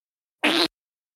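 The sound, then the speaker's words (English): A single short, buzzy raspberry blown with the lips, a quarter-second fart imitation made by a voice, fairly loud, with silence before and after. “That was me making a fart noise.”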